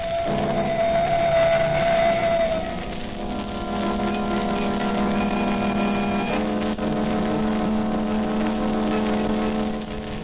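A car engine runs steadily and loudly, its droning hum shifting pitch a couple of times as it drives along, with no voices.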